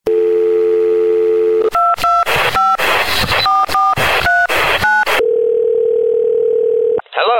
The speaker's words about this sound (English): And we'll talk about it here as we dial out on the super secret confidential hotline number of El Movie Zone Fono.